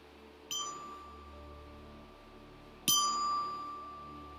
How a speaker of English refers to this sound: It's called the Glockenspiel, made in Sweden. So I use this also for children, but it has been useful for me when I use one of the chimes as a bell para dun sa meditation. Okay? So you will hear the bell at the start.